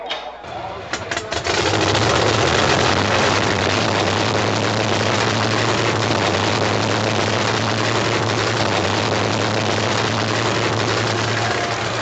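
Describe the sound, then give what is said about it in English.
Drag racing car engines fire up at night racing at the Fenway Drive Strip, with a few sharp bursts, then settle into a loud, continuous roar over a deep, steady drone that holds without a break to the end. “Ladies and gentlemen, to night racing at the Fenway Drive Strip. We've got fuel drive-through, sensational funny cars, wild real standards, and inspire-reading jet cars.”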